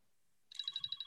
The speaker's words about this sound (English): The timer is, there we go, just gone off. The timer literally just, I don't know, could you guys hear it there?